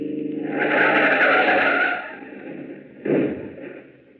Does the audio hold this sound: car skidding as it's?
yes